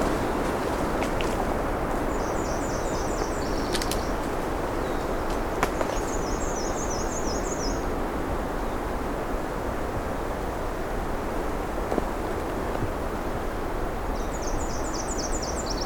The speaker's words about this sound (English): And a black and white warbler on the side here.